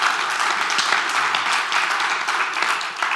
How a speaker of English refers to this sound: Yes, that deserves some applause.